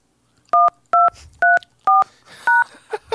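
Five crisp phone keypad tones beep in a steady sequence, each short and evenly spaced as a password is entered into a phone's automatic voice message system, followed by a brief muffled noise at the end.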